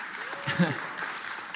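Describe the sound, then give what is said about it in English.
A crowd claps steadily after a statement that the Bible's message is salvation in Jesus Christ, a broad, even wash of hand claps, moderately loud, with a brief voiced murmur rising over it midway through. “Yeah, you can clap that.”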